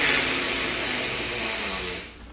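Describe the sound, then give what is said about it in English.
A voice imitates the static of an analog TV tuned to a channel with no station: a steady, breathy hiss that holds evenly for about two seconds, then trails off quickly. No words are spoken. “If you turned it to a channel that didn't have any channel, they would have this staticky looking stuff.”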